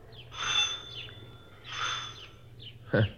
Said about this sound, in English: I didn't know there were any of those around anymore. Don't see many of them nowadays. What? What kind of doorbell?